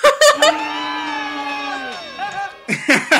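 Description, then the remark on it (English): A group of voices breaks into a loud, sustained scream when a secret word is said, holding one high shared note for a couple of seconds before it trails off, with short excited shouts at the start and end. “Every episode, they have a new secret word, and everybody screams when the secret word is said.”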